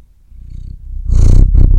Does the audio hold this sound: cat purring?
yes